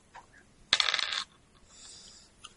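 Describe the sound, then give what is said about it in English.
A short, clattering rattle of dice rolled for a check in a tabletop game, tumbling across a hard surface, about half a second of bright clicks, followed by quiet room tone with no talking. “Not really hacking, necessarily, but if you want to make the roll, it's a D2.”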